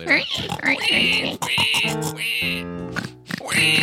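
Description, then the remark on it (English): Several people take turns making loud, nasal pig oinks and snorts with their voices, a quick overlapping series of grunting imitations. “I think we should all do our best pig sounds to kind of give Justin some sound”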